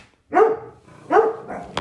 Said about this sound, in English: Oh my gosh, they're going to bark at the cat.